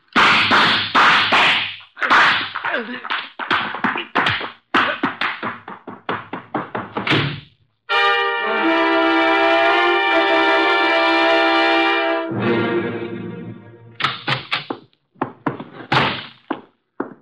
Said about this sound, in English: Archie, you know I dislike the banging of doors.